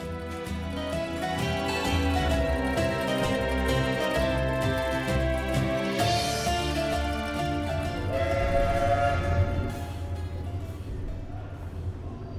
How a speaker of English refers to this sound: At Waterloo, we were fortunate in catching a train for Leatherhead